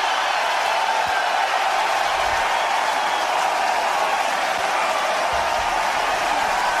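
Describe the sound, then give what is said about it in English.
A large outdoor golf crowd roars and cheers continuously for Tiger Woods, a dense, loud wash of voices and applause that holds steady for several seconds without a break. “The crowd is going crazy.”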